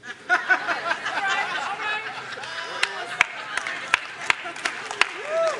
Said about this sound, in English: Now, I know you're clapping out of sympathy, because that's real bad. That's real bad.